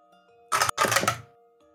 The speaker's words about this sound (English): Sounded like multiple dice. I mean, I have metallic dice.